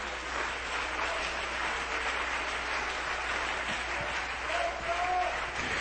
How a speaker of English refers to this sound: Somebody clap your hands and look around.